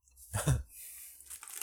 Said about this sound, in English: Wait, like do I use my lips to contain it? Give me a second. Try chewing, yeah, without your lips. No, you close your lips. See, you close your lips. Give me a second. This goes against my nature. I can't exactly chew with my mouth open.